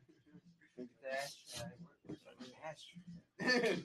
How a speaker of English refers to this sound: Take a pause. Hold on. Hey, get them out of here real quick. Start getting a whole lot of coughing on you right now.